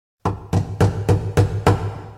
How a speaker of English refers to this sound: Later that night, he awoke to the sound of a heavy knock at the door.